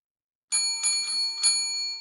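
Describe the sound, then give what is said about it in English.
A small bell on a door jingles as the door is pushed open, struck four quick times in an uneven flurry with bright metallic ringing that lingers and fades out. No voices are heard. “The small bell clanged as Valerian eagerly pushed his way through the door.”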